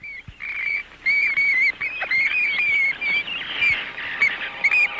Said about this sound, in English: The shrieking of the vampire bat evokes the horror of Dracula.